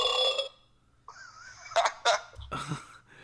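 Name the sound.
burp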